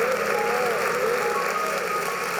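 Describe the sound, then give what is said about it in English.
A church audience applauds steadily for a pastor throughout, a dense, sustained wash of many hands clapping at once, with faint wavering tones beneath. “Come on, give her a hand clap.”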